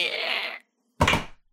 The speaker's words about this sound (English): I don't know if he just stepped or closed the door. I don't know.